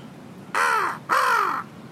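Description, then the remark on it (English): Two loud, harsh crow caws in quick succession, each a raspy half-second call, against a quiet outdoor background with no talking. “Ew, crow.”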